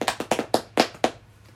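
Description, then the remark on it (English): Hands clap briskly in a round of applause for the speaker's sister, a freshman at Mizzou: about six sharp, fairly loud claps in a slightly uneven rhythm over a second, then a quick fade to quiet. No one speaks. “Round of applause.”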